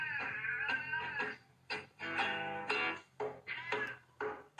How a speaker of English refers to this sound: this cat worked really hard on those lyrics. Gave an amazing performance